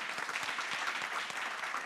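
A crowd claps steadily, a dense wash of many hands applauding at once, fairly loud and continuous with no voices rising above it.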